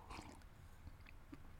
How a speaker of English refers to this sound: That's why I'm drinking coffee as I go. Here comes another big gulp.